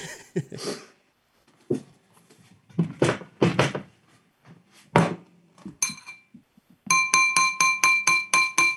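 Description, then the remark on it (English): A flute knocks against glass, making sharp ringing clinks. Scattered, uneven strikes come first, then a quick steady run of about eight bright taps closes it out. “I think he's banging his flute against the glass.”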